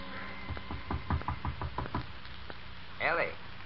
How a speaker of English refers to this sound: Her father knocks at the door.